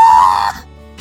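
A person lets out a sudden, loud, sustained scream lasting about half a second, then it cuts off abruptly into quiet with only faint background noise left.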